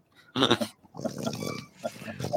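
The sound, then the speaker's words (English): A dog snorts and grunts in a few rough, breathy bursts, a short huffing snort followed by longer, rumbling grunts that sound almost piglike. “You got to bring a dog onto this?”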